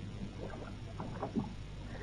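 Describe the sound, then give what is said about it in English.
Oars dip and pull through water in a slow, steady rhythm, with soft splashes and creaks as a crew rows a lifeboat carrying 21 men away from a burning, sinking ship at night in good weather, over a low, constant background rumble. “We'll contact the other boat when we're well away from the ship. Now keep pulling.”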